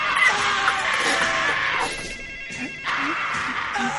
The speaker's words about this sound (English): Yep, that's his yell. That's his angry yell. The stupid angry yell. That's all he has.